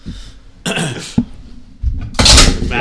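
A wooden chair is banged around and broken up close, with a few loud cracking bursts and a sharp knock, ending in a heavy splintering crash.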